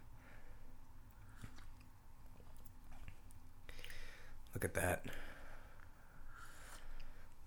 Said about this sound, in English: Look at that. Two sips.